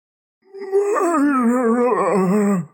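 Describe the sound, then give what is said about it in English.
A single drawn-out, low moan from inside a large, hefty bag on the back seat of a car wavers slightly, then slowly sinks in pitch and fades out, lasting about two seconds at a steady, fairly strong level with no other voices. “A moan from the back seat, from inside the bag.”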